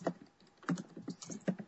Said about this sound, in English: And what are you typing over there at 95 words a minute? Hey, that's what made me get an A in my typing class. Either one of you is typing like a behemoth over there.